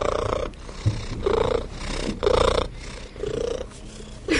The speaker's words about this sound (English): And now this is the purr that cats use when they're trying to get you to do something.